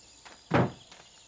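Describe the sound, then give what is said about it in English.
A door thuds shut once as someone heads out, a short knock of sound, with a couple of faint footsteps just before and after it. No one speaks. “I headed out the door. Red followed slowly.”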